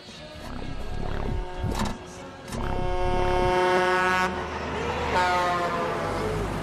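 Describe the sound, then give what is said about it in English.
A loud semi-truck horn blares in long sustained tones with rich harmonic layers, cutting over rumbling road noise and a few whooshing passes, ending in a final extended blast, as the truck's high beams flash on the road in a film scene. “Semi-truck horn, flashing lights, and Lloyd is brought back to life on the road.”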